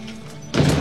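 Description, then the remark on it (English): After a brief quiet stretch, a door is shut with a sudden, fairly loud thud that rings out briefly. It occurs once, with no talking. “Please shut the door.”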